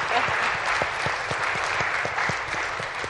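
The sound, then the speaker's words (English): An audience claps for the government steadily for about three seconds, a dense, even patter of many hands at a moderate, unchanging volume with no voices standing out. “Go ahead, clap in the government.”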